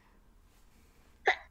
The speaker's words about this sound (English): Gesundheit. Bless you.